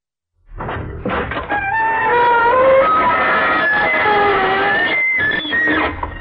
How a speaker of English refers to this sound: Good evening, you on the other side of the creaking door. This is your host to welcome you into The Inner Sanctum.